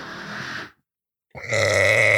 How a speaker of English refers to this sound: Nice. I'm competing with the saw in the background. Okay, okay. That's my goal. That's your contribution. My burps have to be louder than the drill.